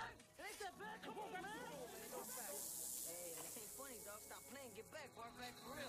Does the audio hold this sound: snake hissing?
yes